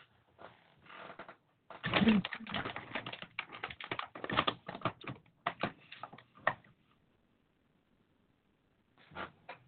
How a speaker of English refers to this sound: No, I heard you typing.